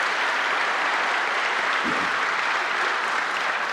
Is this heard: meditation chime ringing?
no